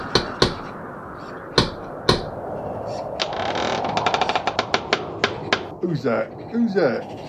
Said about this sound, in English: Right, just knock on the door.